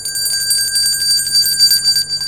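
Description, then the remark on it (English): An old small bell jingles continuously with rapid, shimmering strokes, its bright high tones ringing out steadily for a couple of seconds with no voices. “An old bell”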